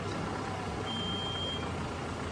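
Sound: car pulling up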